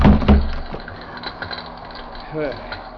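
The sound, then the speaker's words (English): A burning cabin roof collapses: a loud, heavy crunching burst at the start, then scattered crackles, creaks and snapping timber that trail off, with a brief groaning creak near the end. “There goes the roof.”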